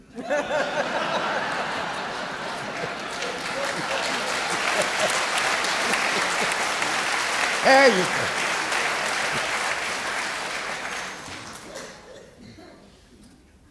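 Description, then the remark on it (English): Scattered, thin audience applause lasting around twelve seconds, a modest patter of clapping with a few chuckles and a brief spoken remark, then fading out toward the end. “It's a weak clap.”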